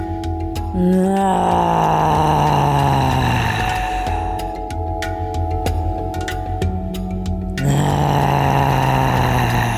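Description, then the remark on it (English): A person, after breathing into the belly, exhales with a long, loud roaring groan, the voiced tone sliding slowly downward, then a fresh roaring exhale begins near the end. “Breathing into the belly and then exhaling with a roar.”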